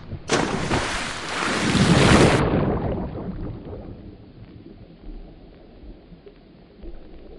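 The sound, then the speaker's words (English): A person jumps into water: a big, loud splash as they plunge in, a roaring burst lasting about two seconds, then sloshing, bubbling water settling into a low churning rumble. No voices. “Higher Ideas Podcast Season 2 starts not with a bang, but with a splash!”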